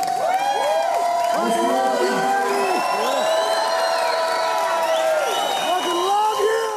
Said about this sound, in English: So please give the most amazing, audacious, bodacious round of applause. The recipient of the Lester Grinspoon Lifetime Achievement Award.